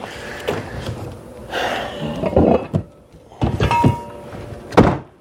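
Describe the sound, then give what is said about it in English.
A series of metallic clunks and scrapes as a jack stand is shifted and set under a car's jack point, raised one more notch, with several loud knocks and rattles spaced irregularly over a few seconds. “So I can go one more notch on the jack stand.”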